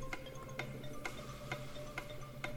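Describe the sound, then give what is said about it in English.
A clock ticks steadily, six crisp ticks about half a second apart, over a low constant hum, a countdown timer started for a round of a word-puzzle game, with no one speaking. “Start the clock.”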